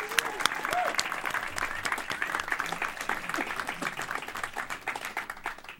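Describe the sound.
Audience applause: a dense, steady patter of many hands clapping, with occasional brief cheers or voices mixed in, holding at a fairly even loudness throughout.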